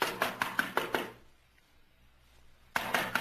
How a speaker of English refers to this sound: Here, let me knock. What's the matter? Don't I know how to beat on the door? No one's answered, have they?